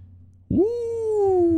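A single loud, drawn-out cat meow starts abruptly after a brief quiet moment and holds a steady, slightly falling tone until the end.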